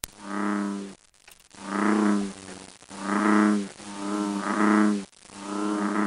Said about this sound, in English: that is the call of the American bullfrog.